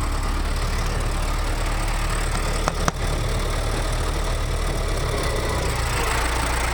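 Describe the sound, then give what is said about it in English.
An early motorized ambulance engine idles steadily with a low, rumbling chug and a faint knocking rhythm, broken briefly by a couple of sharp clicks partway through. No voices are heard. “this ambulance may be the oldest motorized ambulance in the country”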